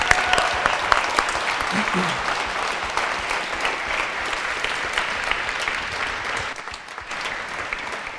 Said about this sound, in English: Listen, I don't know how long that celebration goes on in heaven, but we did a little bit of clapping and they're partying up there for you that came home.